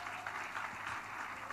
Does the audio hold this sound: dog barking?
no